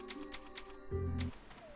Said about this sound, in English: There's a typewriter here, so we will save our game.